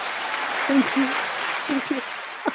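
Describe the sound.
An audience claps steadily after a card magic trick performed live on air, in a dense, even wash of applause, with a few scattered voices and whoops rising briefly above the clapping.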